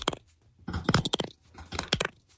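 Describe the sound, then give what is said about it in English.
A finger and thumb rubbed together to mimic a cricket, producing three short bursts of dry, rapid, rasping clicks with brief pauses between them. Fairly quiet, with no talking. “He would rub both his index finger and his thumb together and make this cricket sound.”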